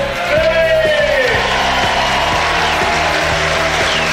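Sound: football stadium crowd cheering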